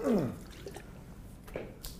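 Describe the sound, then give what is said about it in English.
A short vocal grunt, then soft wet splatters and a brief spraying burst as someone spits out water, fairly quiet. “He spit the water.”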